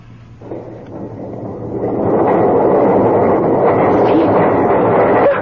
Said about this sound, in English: The doors are opening. How?